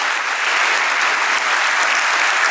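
Steady, dense clapping from an audience fills the whole stretch, a loud, even wash of many hands with no voices on top.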